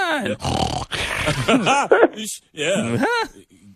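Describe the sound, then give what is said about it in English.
A dog grunts, snorts and makes rough, coughing sounds as it coughs up mucus, fairly loud. The burst of throaty noises comes in several quick, uneven spurts with short pauses between them. “He's coughing up stuff.”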